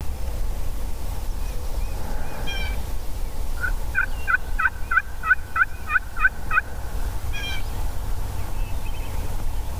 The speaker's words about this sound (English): Because the turkeys are so far away and the road noise is so loud, you really can't even hear them gobble.